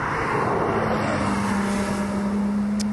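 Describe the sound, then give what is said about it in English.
A GT3 sports car's engine roars past with a loud, steady drone, a sustained low hum rising slightly in pitch over a few seconds. No one speaks. “Another GT3.”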